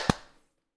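A single sharp hand clap made for audio sync, a bright, snappy burst with a quick ringing decay that fades within a fraction of a second; no voices accompany it.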